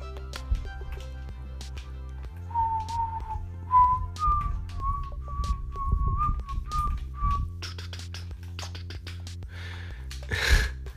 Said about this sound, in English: I'm sorry. I'm supposed to be talking. This is a podcast, not a whistle podcast.